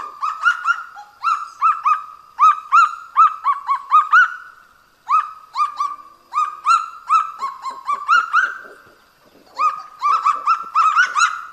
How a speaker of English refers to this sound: That bird was the kagu, a flightless bird about the size of a chicken that lives on the forest floor and is found only in New Caledonia.